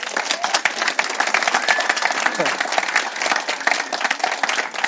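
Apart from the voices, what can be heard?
audience applause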